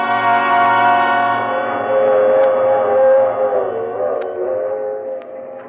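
A train moving along the tracks: a steady low rumble beneath a long, loud, wavering whistle, with faint clicks, lasting several seconds with no voices.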